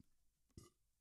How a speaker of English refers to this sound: It was quite a slow, smooth one, that was. A very feminist burp.